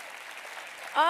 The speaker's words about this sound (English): So where are our youth? Our youth in a section, where are you? Stand up. Honor our youth with a hand clap. Thank you so much.